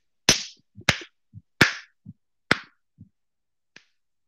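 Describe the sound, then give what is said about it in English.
Four sharp punches land on the same arm with fleshy smacks at uneven intervals, each followed by a soft dull thud, then a faint final tap. No one speaks. “Hey, you're punching that one arm, and it's just...”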